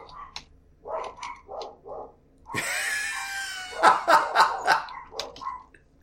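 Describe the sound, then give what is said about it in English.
Two dogs, one of them a little dog, bark back and forth at each other in short, choppy bursts, broken by a drawn-out yowling whine, then a rapid run of loud, sharp barks that tapers into a few softer yaps. No one speaks. “I'm just waiting for them to stop barking.”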